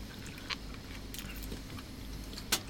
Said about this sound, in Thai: เมื่อพูดไปก็เคี้ยวลูกชิ้นไปด้วย